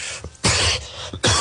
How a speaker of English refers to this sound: Excuse me, folks. I apologize. I hate when people cough.